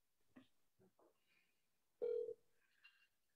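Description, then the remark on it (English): A phone line rings out with a single loud, steady ringback tone lasting about a third of a second, surrounded by faint, scattered electronic beeps and clicks, with no one picking up. “No one wants to pick up their phone.”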